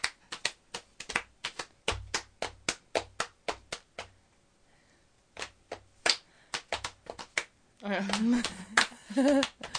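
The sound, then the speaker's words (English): Quick, patterned hand claps of a clapping game, crisp, run in rhythmic bursts with short pauses; near the end a voice briefly speaks or sings over the continuing claps. “I said that's a Delta Bird cake clap.”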